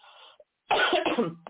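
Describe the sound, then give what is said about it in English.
A harsh cough from a person with asthma: a quick cluster of two or three rough, chesty bursts running together, preceded by a faint breathy murmur and followed by a brief catch of breath. “Folks, I'm sorry about the coughing.”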